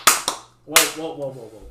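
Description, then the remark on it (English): Two quick, loud hand claps into a sensitive microphone, then a third clap that runs straight into a short vocal sound from a voice. “Boom. Clap. Sensitive mic.”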